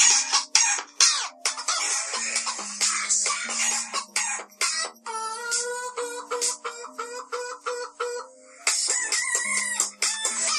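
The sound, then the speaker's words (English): A rooster crows repeatedly in loud, harsh bursts, its strained calls stacking into a raucous series of cock-a-doodle-doos with no talking over them. “Is that chicken one?”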